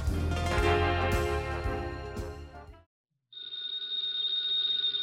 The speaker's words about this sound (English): Ladies and gentlemen, that phone bell means adventure. Hello? Hello. The young man answering the phone is Archie Goodwin.